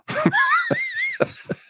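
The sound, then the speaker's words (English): A dog snoring: a high, wavering nasal whistle rides over four breathy, snorting puffs in quick succession, fairly loud with no talking over it. “You want to hear my dog snore?”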